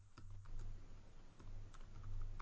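Soft, irregular clicks of someone typing a web search on a computer keyboard, fairly quiet, with a low steady hum underneath and no one talking.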